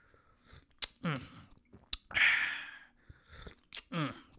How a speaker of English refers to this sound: Let me sip some tea.